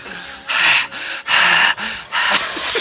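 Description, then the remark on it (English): Heavy, rapid panting: loud, breathy in-and-out gusts repeating about every half second, with no talking. “Why are you breathing hard?”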